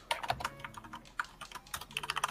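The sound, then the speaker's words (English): Rapid, irregular clacking of computer keyboard keys, a steady stream of light taps with no voices, speeding into quicker bursts toward the end. “Let us welcome someone's keyboard.”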